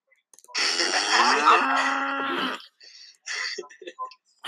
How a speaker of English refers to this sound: Is that her getting angry or the moo sound effect? I think it's the moo.